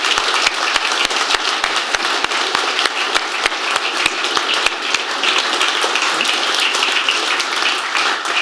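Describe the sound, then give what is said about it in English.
An audience applauds current and former McLaren team members standing up among them, steadily for several seconds, a dense, even wash of many hands clapping with a few sharper individual claps standing out, holding at a fairly loud level throughout. “Ladies and gents, give them a round of applause, please.”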